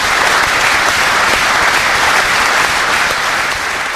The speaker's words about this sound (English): The passage of the bill was paused briefly when more than 50 TDs applauded health workers.